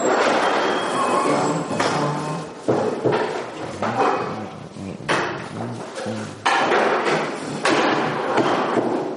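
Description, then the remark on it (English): A series of heavy thuds and knocks as two chairs are set down on a hard floor by an open back door, about five impacts at irregular intervals, fairly loud with a ringing decay. “Put two chairs there.”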